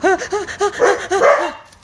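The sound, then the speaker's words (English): Dogs, Ari and Lila, bark in a quick, steady run of about six sharp barks, fairly loud, with overlapping yaps near the end before fading out. “Why are they barking?”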